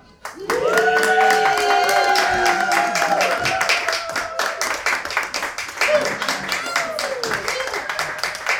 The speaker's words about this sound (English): Just hold on 1 second. Clap a lot as I walk.